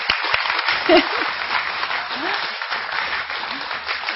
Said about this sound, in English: Clap for all the ladies, please.